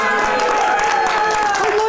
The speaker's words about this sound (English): Because I like that every time someone says my name, people cheer.